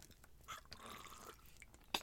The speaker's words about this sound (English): Excuse me while I take a sip of water.